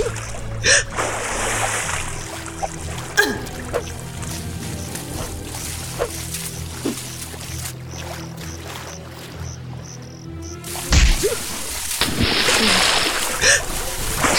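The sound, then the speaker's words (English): Water splashes and churns in irregular, heavy bursts as one person holds another under water, with a violent surge of thrashing near the end, all over a steady low rumble. “If I hold you under water long enough, I shall not need my blade after all.”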